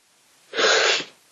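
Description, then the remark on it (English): A single loud sneeze, a sharp breathy burst lasting about half a second, with quiet background before and after and no talking. “Oh gosh, gonna sneeze.”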